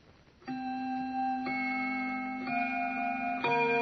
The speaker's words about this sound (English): It was exactly 6:45. That I remember because the grandfather's clock in the living room was just beginning to chime.